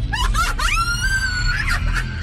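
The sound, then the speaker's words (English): An eerie cackling scream from a woman: a few choppy, laugh-like bursts rise into one long, piercing shriek that wavers and then breaks off, over a low rumbling background. “She cackled at the sky. Not quite a laugh, something closer to a scream.”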